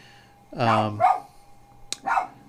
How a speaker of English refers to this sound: The weather radio goes off. The dogs, as you can hear, go crazy.